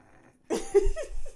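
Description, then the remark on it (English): After a brief quiet moment, a person makes one short, raspy snoring noise with their voice, fairly loud, a throaty snort lasting under a second. “At least I don't snore.”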